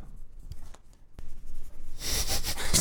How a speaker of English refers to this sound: Go ahead and write them down on those pieces of paper in front of you, and then we'll compare answers.